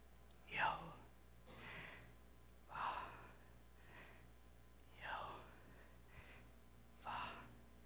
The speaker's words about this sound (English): But the sound of Yo-Heh-Vah-Heh in the Hebrew is the sound of nothing but breathing.